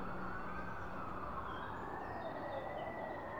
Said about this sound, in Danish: De første sirener kom ganske kort tid efter for politibiler, der allerede var i området.